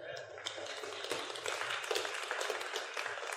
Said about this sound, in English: Let's clap at that, right?